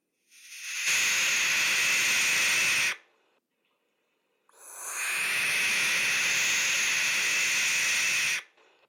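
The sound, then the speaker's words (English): A barn owl's harsh, breathy hissing screech, heard twice: a long sustained rasp of about two seconds, a brief pause, then a second, longer hiss. Loud, with no talking. “Yeah, owls make really interesting noises.”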